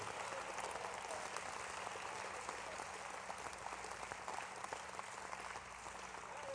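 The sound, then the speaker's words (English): An audience at an evening church service claps their hands together in dense, steady applause, many overlapping claps forming a continuous crackling wash that holds at an even, fairly loud level without any voices. “Well, clap your hands again just to show the devil you're not intimidated.”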